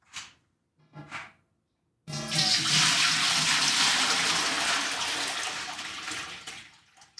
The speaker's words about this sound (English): For the season finale, we're going to be brewing some beer. It's a little special. So right now, I'm putting 2.5 gallons of water in this big old stupid pot.